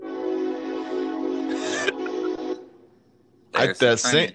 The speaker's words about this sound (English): I hear a train. Uh-oh. Oh, I was wondering what that was. I thought maybe you had some sound effects going on. No.